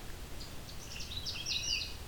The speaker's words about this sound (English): This bird's keeping to the low growing trees right now, in amongst the cedars.